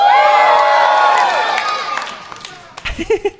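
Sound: audience cheering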